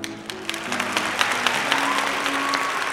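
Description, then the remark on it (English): A crowd in the Cottage Rest Inn tavern claps steadily for a bard. The applause is dense and overlapping, with a low hum of murmuring beneath it and a faint held tone in the background. “Ah, looks like the bard has done it again. What a splendid crowd y'all have been.”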